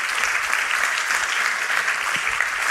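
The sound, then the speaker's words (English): A Sunday night crowd applauds teenagers aged 13 to 19 who are standing up, many hands clapping at once in a dense, even wash of sound that holds at a constant loudness without pauses. “And so, yeah, give them a hand clap.”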